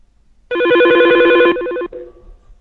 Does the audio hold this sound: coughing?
no